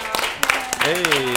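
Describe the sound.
Scattered audience clapping as a guest is brought up: irregular, sharp hand claps of moderate loudness, with a voice speaking over them partway through.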